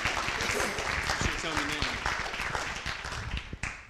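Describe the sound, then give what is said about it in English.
A church audience breaks into steady, dense applause for people coming up to the front to share, many hands clapping together with murmured voices and a few cheers mixed in, briefly dipping before resuming. “And everybody likes to be clapped for.”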